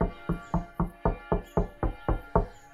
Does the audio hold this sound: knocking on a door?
yes